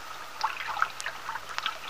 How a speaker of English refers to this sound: Now the two young people have parked the car in the driveway which slopes up to the house, have walked down through the garden to the little brook which rambles along at the foot of a little hill and back.